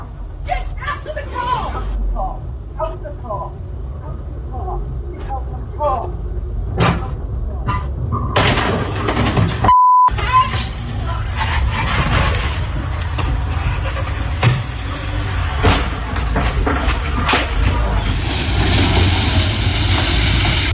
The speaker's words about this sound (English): What is this chaotic car scene All thoughts welcome.